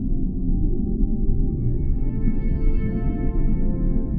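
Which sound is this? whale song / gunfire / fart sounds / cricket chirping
whale song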